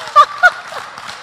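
An audience claps in appreciation of a leader in a steady, noisy patter, and two short, loud, high-pitched whoops or cheers burst out above the applause.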